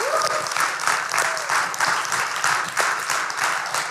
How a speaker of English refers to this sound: And right now, can we just get the pastors of the house to stand up? I don't even see any. There. Let's just give them applause, because we gotta give them love.